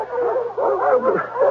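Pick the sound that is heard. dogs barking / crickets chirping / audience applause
dogs barking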